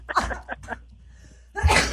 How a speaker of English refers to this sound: Okay. I'm going to cough on that.